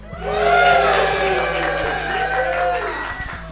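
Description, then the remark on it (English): A live audience at the CLB 2022 Biennial Convention, in a packed room overflowing into the hallway, cheers and calls out together, many overlapping voices swelling quickly and holding at a steady, loud roar for several seconds before tapering slightly. “Why don't you guys cheer or say hi?”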